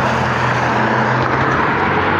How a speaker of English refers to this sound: I came out at 3:30 in the morning and I didn't expect there to be one car in every. Now I've had so many vehicles come by.